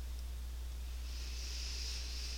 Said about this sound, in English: We're going to start by just breathing in through the nose and out through the mouth, as if you were blowing through a straw or trying to blow up a balloon. You're going to sort of purse your lips and breathe out slowly.